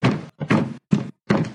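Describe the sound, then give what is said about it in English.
Feet stomp heavily on a floor four times in a steady rhythm, each thud loud, with short silent gaps between them and no voices. “Stomp your feet.”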